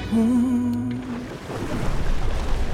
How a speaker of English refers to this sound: Hey, what's the water doing? I don't know. The water's moving and the water level on the beach is changing. Saw, dude. It's like the water level's receding because it's tiding over.